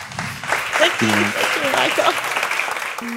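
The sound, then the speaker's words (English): An audience applauds speaker Maryanne Wolf steadily, a dense wash of many hands clapping at once, with a few scattered voices and cheers rising briefly through the noise. “Please give a warm round of applause for tonight's wonderful speaker, Maryanne Wolf.”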